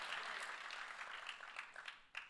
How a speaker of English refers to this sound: Come on, clap today if you're grateful.